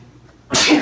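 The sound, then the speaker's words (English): A single sharp sneeze bursts out after a moment of near silence, loud, with a broad, hissing spray of sound that cuts off abruptly. “Bless you.”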